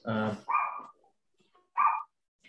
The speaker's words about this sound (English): That dog is not good at all. That dog is barking, and I am trying to have this conversation.